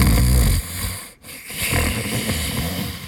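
Loud, rumbling snoring from someone curled up in a muddy puddle, a heavy snore that breaks off into a short breathy pause before another rough, drawn-out snore starts up.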